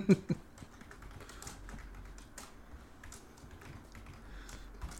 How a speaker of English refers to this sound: Madly typing.